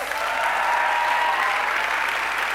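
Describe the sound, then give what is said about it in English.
Sustained, dense applause from an audience, a steady wash of many hands clapping at a fairly loud, even level with no individual claps standing out and no talking over it. “She deserves all of that applause.”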